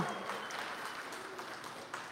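A crowd applauds steadily, dense overlapping claps forming a continuous wash of sound in a large room, with no talking over it.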